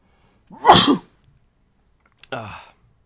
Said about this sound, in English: I apologize, I have to sneeze.